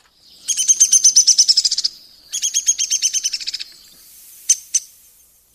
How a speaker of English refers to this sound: Woodpeckers do not really sing, though they do have distinctive calls. Here's the downy.